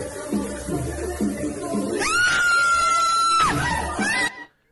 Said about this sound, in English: She always screamed like she was upset before it happened. She knew it was coming. She was pissed.